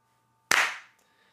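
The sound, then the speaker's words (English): A single sharp hand clap rings out after a moment of near silence, loud, with a bright burst that decays quickly into a short echo. “We got to do the clap.”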